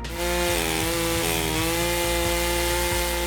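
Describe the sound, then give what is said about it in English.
A loud chainsaw used by chainsaw artist Randy Gauthier runs, its engine droning steadily while biting into a log, with brief rhythmic dips in pitch as the blade bogs down in the wood. No one speaks. “Still ahead, the chainsaw artist.”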